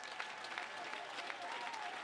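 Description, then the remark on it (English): An audience claps their hands together in a dense, continuous wash of applause, steady and fairly loud throughout, with a faint sustained tone running underneath. “Oh, clap your hands, all you people.”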